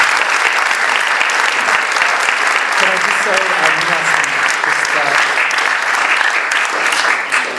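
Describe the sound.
A full audience bursts into sustained applause, a dense, steady clatter of many hands clapping for several seconds, with faint voices murmuring underneath partway through.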